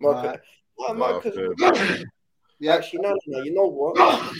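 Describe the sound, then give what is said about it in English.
Two sneezes, each a drawn-in voiced breath building up to a sharp, hissing burst, with a short pause between them. “Bless you, bro.”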